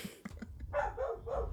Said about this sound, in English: Oh my God. Shut up! Murder those dogs. Kill that dog. Yeah. Make them into soup.